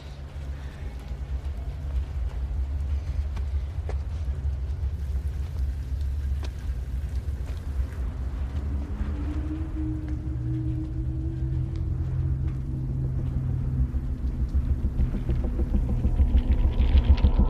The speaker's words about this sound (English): So right now you're listening to the truck and we're looking at the kid.